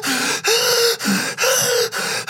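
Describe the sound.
A voice imitates heavy, labored gasping of a man who can't breathe, a series of about five loud, rasping breaths in quick succession, each drawn in harshly with brief pauses between.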